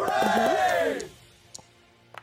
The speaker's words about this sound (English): That's a natural. Oh, no. The sound, I heard the confetti before the dice.